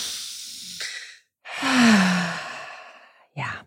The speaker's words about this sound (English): Hey, I need to encourage people to breathe regardless. That's true. So let's do it. One, two, deep three. Deep breath.